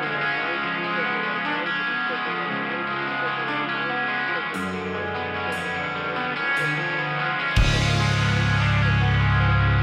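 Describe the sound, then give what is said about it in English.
A heavy metal music sample plays alone: a thick wall of distorted guitar, punctuated by a few sharp hits, then a sudden booming, bass-heavy surge near the end. “If you want to throw in a little metal, maybe some samples of from …”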